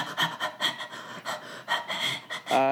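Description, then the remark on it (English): A person demonstrates a fast breathing exercise, breathing in quick, rhythmic pants, about two or three breaths per second, fairly loud, before a voice briefly begins at the very end. “Oh, just like the fast breathing thing?”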